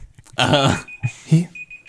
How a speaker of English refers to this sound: that's an alarm.